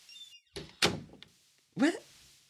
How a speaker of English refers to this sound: And please close the door on your way out.